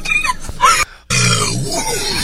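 A short burst of noisy vocal sounds, a brief silence, then a long, loud, low rumbling burp from a girl in Australia after chugging an entire bottle of soda, carrying on for over a second.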